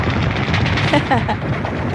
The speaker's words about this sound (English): That's more machine guns. That's his sound effects he's putting in there. Yeah, he puts in machine guns and explosions to go off.